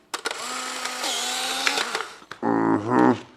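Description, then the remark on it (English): A green instant camera snaps a photo when its yellow shutter button is pressed: a sharp shutter click, then a steady mechanical whir of the film being ejected, followed by a brief pause and a second, higher-pitched motorized buzz. “Is this yellow button the shutter?”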